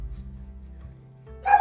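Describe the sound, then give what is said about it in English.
A single sharp dog bark bursts out loudly at the very end, after a stretch of low, quiet background rumble. “This dog.”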